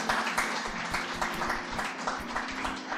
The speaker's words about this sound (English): Let's give the Lord the loudest clap offering that you can give him.